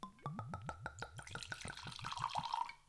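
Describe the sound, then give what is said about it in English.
Whisky glugs out of a bottle into a glass in quick, rhythmic bursts that blur into a steady, splashy pour as the glass fills. Fairly quiet, with no voices. “And I poured you actually normal glasses time.”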